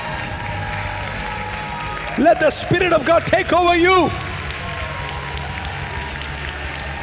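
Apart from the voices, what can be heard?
audience clapping hands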